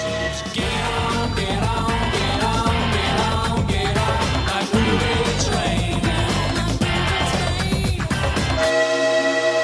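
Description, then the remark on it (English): A loud, continuous rumble of a rolling train with clattering rhythm and blaring horn tones, running steadily for several seconds before ending on a sustained horn-like note. No one speaks. “All aboard the movie train. Choo-choo. Choo-choo.”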